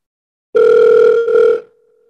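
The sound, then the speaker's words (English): A loud, steady telephone dial tone hums for about a second, breaks off briefly, then resumes before fading into a quiet trailing tone, as a call is placed to Yankees general manager Brian Cashman for a phone-a-friend lifeline. No voices are heard. “I'm going to phone a friend.”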